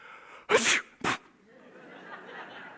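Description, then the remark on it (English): A voice imitates a sneeze with two loud, explosive bursts, a long breathy one followed by a short sharp one, then fades into quiet background noise. “Do you know, if God can do that when he sneezes, can you imagine what he does when he really flexes his muscles”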